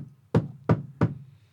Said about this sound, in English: Someone was just hammering upstairs. Oh. My mic picked it up, so okay.